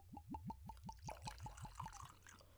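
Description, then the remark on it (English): Bourbon glugs out of a bottle in a quick, steady series of about a dozen hollow gulping pulses, clear, with a splashy trickle underneath as it fills a glass in a big pour. “Gulp, gulp. That was so cool. That was kind of a big pour, guys.”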